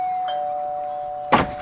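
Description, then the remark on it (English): A doorbell rings with a steady, sustained electronic tone that holds for the whole moment, then a brief clattering burst near the end, as if the door is handled. No one speaks. “Ring the doorbell, goofball.”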